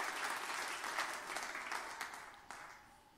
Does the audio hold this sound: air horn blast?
no